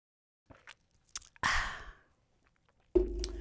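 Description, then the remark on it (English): A few soft mouth clicks, then a short breathy slurp as someone sips Hennessy cognac from a glass, followed by a low satisfied exhale. Fairly quiet, with no talking. “Let me take a sip of that yak.”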